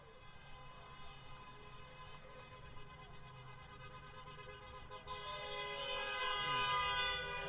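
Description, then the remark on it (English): A Range Rover's car horn blares in a long, sustained honk on Sunset Boulevard in Hollywood, its steady tone swelling louder toward the end over a rumble of passing traffic. “I don't know if I'm comfortable with a Range Rover honking for us.”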